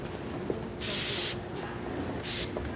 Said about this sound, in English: So, they're spraying snow on cactuses? They are. Fake snow on cacti.